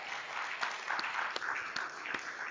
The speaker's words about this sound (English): And to just keep this clap rolling, I would like